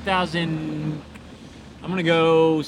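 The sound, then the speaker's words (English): A voice imitates the loud, rumbling modified exhaust of a 2016 Volkswagen Golf with a wing on top, in two revving bursts, one short and one longer, fairly loud, with a brief pause between them. “With the wing on top and a screwed up exhaust, and he's probably gotten in there and jacked everything else up.”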